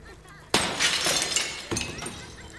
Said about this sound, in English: I smashed the antique stained glass with a blow and then climbed through it, lacerating my hands and arms more in the process.